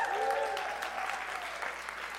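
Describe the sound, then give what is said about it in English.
A church audience claps during a sermon in a steady, dense, continuous patter of many hands, with a faint voice rising briefly at the start. “Yo, can you all stop clapping so you don't wake him up, please?”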